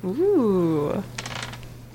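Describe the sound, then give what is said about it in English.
A drawn-out vocal exclamation gives way to a brief clatter of dice tumbling across a table, a quick run of several light clicks lasting about half a second; the roll comes up a 6. “I got a 6, so exploding dice.”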